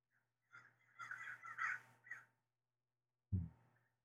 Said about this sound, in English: There were some crows right there.